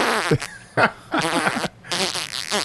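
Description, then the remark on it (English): A voice imitates the sound of a dog's watery diarrhea, let out outdoors an inch from the speaker's foot, in several bursts, with bubbly, buzzing lip-flaps and squelchy gurgles over nearly three seconds, fairly loud and with no talking. “He runs over to my foot, and an inch away from my foot, he just shits. And I didn't see it. I heard it first.”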